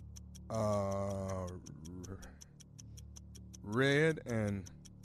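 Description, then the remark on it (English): A 60-second game show countdown clock ticks steadily in a quick, even rhythm from start to finish, sharp, while a voice talks loudly over it in short bursts. “start the clock. Give me 60 seconds, please.”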